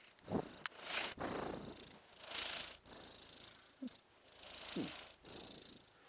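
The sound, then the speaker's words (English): Rebus the cat purrs steadily while asleep, in a low, rumbling rhythm, each soft buzz rising and falling with his slow breaths, with brief pauses between cycles and no talking. “I checked his breathing. You heard it for yourself.”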